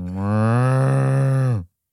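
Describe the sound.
A person imitates a cow with a single long, low moo, held steadily for about a second and a half before dropping off, loud with no other talking.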